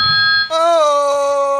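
telephone ringing

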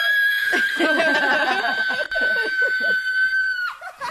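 woman screaming

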